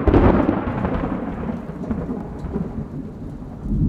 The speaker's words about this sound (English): Then, like a bad omen, the pounding rain returned with a vengeance.